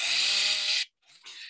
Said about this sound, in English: You got a chainsaw.